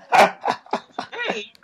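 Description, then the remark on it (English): A dog woken by knocking barks in a quick run of four or five sharp barks, the last one drawn out into a longer, whining yelp. “You're waking up the dog.”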